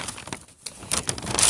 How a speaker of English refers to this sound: Rattle, rattle, crinkle paper, right? So they just, it was really cute. And of course, when you see them at the table and you see a bunch of crafting supplies, you know they're going to be making something or decorating something.